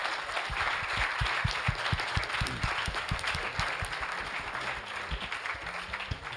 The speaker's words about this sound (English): So if I may, can we please first offer a round of applause for the organizers?